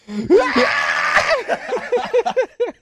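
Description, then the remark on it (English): A loud, strained scream holds for about a second, then breaks into a quick run of short, choppy cries and gasps, raw, probably a person imitating the scream. “When I'm all gassed and shit, I'm like, here comes a scream.”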